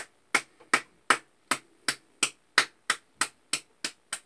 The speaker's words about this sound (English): Somebody just put those hands together and give the Lord a big old hand clap right now. He's worthy. He's worthy. He's worthy.